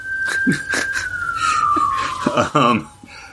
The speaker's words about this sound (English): Sorry, there's a police car going by right now.